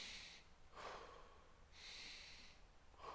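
Slow, deliberate breathing: sharp, hissy inhales through the nose alternate with softer, breathier exhales through the mouth, about two full cycles with no talking.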